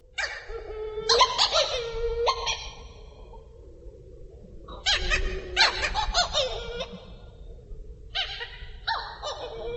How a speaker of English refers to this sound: The first was a Hawaiian petrel, recorded in Haleakala National Park in Hawaii.